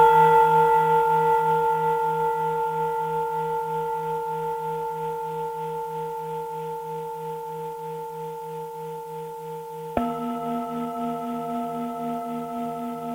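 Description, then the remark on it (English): A couple of Tibetan singing bowls, heard over a phone line, ring out with long, shimmering tones that pulse and waver as they slowly fade, then a second bowl is struck, adding a deeper sustained hum. No one speaks. “I have a couple of Tibetan singing bowls here, so I'll play them right now for you.”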